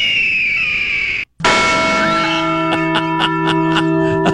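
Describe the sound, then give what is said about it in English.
A harsh, wavering bird squawk lasts about a second, then after a brief pause the Liberty Bell strikes loudly and keeps ringing with a rich, sustained, slightly pulsing tone. No one speaks. “play Squawky, then the Liberty Bell in quick succession, so it sounds like Squawky has flown into the Liberty Bell and caused it to ring”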